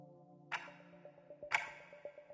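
A clock ticks steadily, with two sharp, ringing clicks exactly a second apart and fainter ticks between them, over a low, steady hum.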